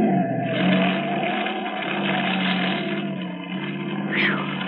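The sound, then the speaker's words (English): A car skids past on a road made slippery by oil from an overturned oil truck. Its engine roars loudly and steadily, the pitch shifting as it races by, with a brief tire squeal near the end and no one speaking. “That screwball almost skidded right into us.”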